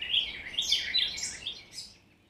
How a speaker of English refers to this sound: And you might notice in listening to bird songs that your ears become focused on one particular bird. And that bird will sing for a while.